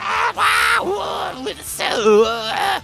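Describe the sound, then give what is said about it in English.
A close, loud voice imitates screeching zombies, letting out a few strained, wavering shrieks and groans in quick succession, with no words spoken. “So as it has you in its jaws, you just reach out and start blasting fireball after Scorching Ray down its throat, and you just hear screeching of the zombies within its gullet.”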